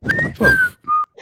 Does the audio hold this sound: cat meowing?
no